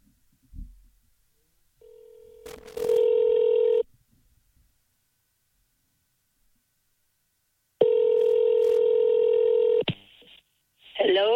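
A telephone call to Dad connecting: a short burst of dialing, then two long, steady ringing tones separated by a pause, and a voice briefly answers at the very end.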